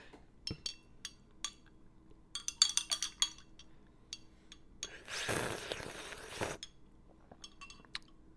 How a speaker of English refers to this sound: I'm gonna take a quick sip really fast.